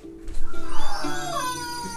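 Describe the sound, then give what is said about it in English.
A chicken squawks loudly, a quick burst of pulsing, shrill cries that stretches into a longer wavering call over about two seconds, with no one talking. “Oh shit, what the hell was that? That damn chick.”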